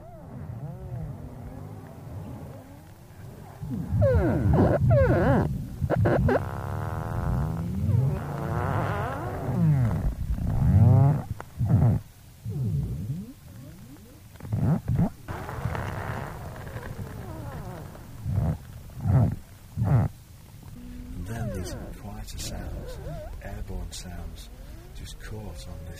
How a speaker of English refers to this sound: this low drumming and creaking and bubbling, sea ice grinding on the pumice and the harder glacial ice and other smaller icebergs.